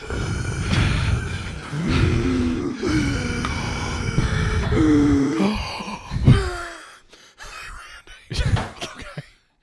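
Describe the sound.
A voice imitates the exaggerated, heavy breathing of plaintiffs suing McDonald's: long, loud, rasping groan-like breaths, giving way to several sharp, broken gasps toward the end.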